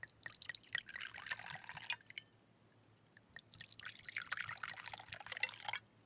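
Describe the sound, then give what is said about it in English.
Wine glugs and splashes into a glass in two bursts, a bright, bubbly pouring sound with a short pause between, moderately quiet, with no talking. “Ready for that glass of wine”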